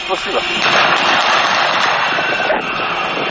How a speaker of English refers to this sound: There's gunfire going off in the center of Nazran. I don't know why. I'm going to go investigate. Investigate what the gunfire is about.